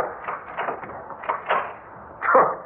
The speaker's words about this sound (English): Ah, what good is locking that door going to do?